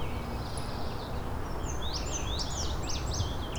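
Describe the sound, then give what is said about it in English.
Outdoor birdsong featuring an indigo bunting and a scarlet tanager, a run of quick, sweeping high phrases in the second half, over a steady background hiss. “Here's an indigo bunting and a scarlet tanager.”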